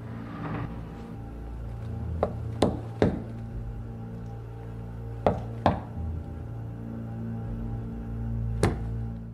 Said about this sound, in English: Now, that's not the knock that she says, right? That's the wrong knock she says on purpose. The knock that she tells the Special Forces guy is two knocks, single knock.